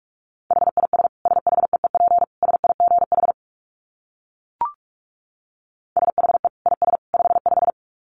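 Rapid Morse code at 45 words per minute: a single steady mid-pitched tone keyed in quick dits and dahs, two bursts separated by a silent pause with a brief click between them. No voices.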